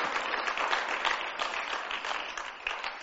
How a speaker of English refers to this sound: Come on, let's clap for Jesus. Woo! Hallelujah!